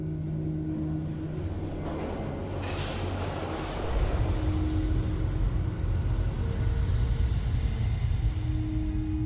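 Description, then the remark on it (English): A London Underground tube train rumbles past, its wheels letting out a sustained high-pitched squeal over a heavy, steady roar that swells louder partway through. No one speaks. “These murders had been committed at random on the London Underground by pushing complete strangers in front of tube trains.”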